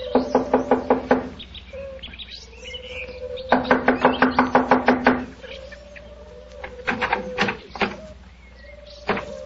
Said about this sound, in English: Here we are. I'll knock on the door.